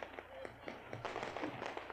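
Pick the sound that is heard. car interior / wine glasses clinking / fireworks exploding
fireworks exploding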